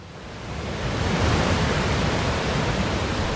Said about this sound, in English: Now the dam is spilling,